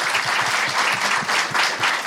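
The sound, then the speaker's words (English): A crowd at a town hall event claps steadily, a dense, sustained burst of many hands applauding at once, fairly loud and continuous with no voices standing out. “big round of applause”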